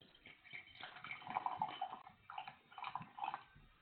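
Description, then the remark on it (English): Ula whiskey is poured into a glass, a bubbling, gurgling trickle that swells in two bursts with a brief pause between, with no voices. “Just poured it.”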